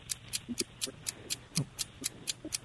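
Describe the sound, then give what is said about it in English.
A game show clock ticks steadily, about four crisp ticks per second, continuing evenly throughout with faint low background murmur beneath. “Start the clock.”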